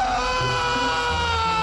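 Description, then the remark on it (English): A man, an England football fan in the street who strays behind other chanting fans, screams "England!" loudly and continuously, a strained, sustained cry held steady for under two seconds with a rough, slightly crowd-like texture. “And one of them strays behind the others and starts screaming.”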